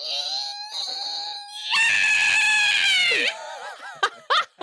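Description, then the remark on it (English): A person vocally imitates the scream of Nandi, a tusked creature, as she leaps forward: a thin, high whine swells into a loud, harsh shriek, then breaks into warbling squeals and a few short, sharp yelps. “You see, with a scream like that, you see a yellow aura appear around Nandi as her eyes turn blue and her fur takes on a golden sheen.”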